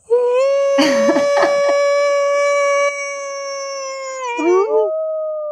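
A long, steady howl holds one pitch for several seconds, with a few rougher yelping bursts overlapping early on, then wavers and slides at the end. It is loud.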